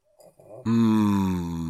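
A single loud, drawn-out snore with a steady, buzzy low rumble lasting about a second, preceded by a few faint, softer breathy sounds. No one speaks.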